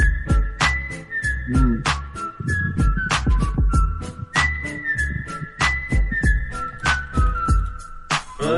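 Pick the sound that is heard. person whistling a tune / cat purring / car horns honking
person whistling a tune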